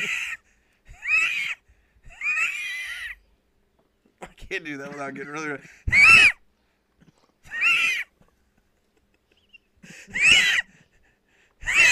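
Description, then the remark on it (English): A voice imitates an old car struggling to start, with a series of about six loud, raspy, wheezing bursts separated by pauses and a short stretch of speech partway through. “No, I'll sound like an old car trying to start.”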